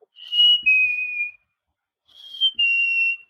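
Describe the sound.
A person whistles an imitation of a chickadee call: two clear, high two-note phrases, each a brief higher note dropping slightly to a longer held tone, with a pause between them.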